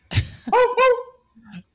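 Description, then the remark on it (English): A person voices a quick dog-bark imitation: a breathy burst followed by two strong, tonal, bark-like yelps, then a faint low trailing sound. “Okay, next up, dog. The dog.”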